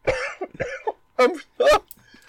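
A short, loud fit of coughing after hard laughter: four or so harsh, raspy bursts in quick succession, the first ones voiced and laugh-like, the later ones sharper and more explosive, with no talking.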